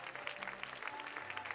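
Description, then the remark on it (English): An audience claps hands unto God in a steady, dense wash of applause, many overlapping claps forming a continuous crackle at an even loudness, with a low hum underneath and no voices. “Move in as close as you can and clap those hands unto God.”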